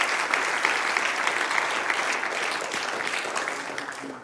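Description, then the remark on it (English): An audience claps steadily in praise, a dense wash of many hands that holds strong for several seconds before easing off slightly toward the end, with no one speaking. “Come on, can you give the Lord a hand clap of praise and believe that together?”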